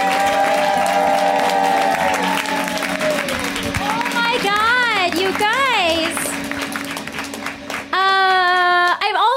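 An audience applauds loudly and steadily for about nine seconds, with high whooping cheers sliding up and down in pitch over the clapping.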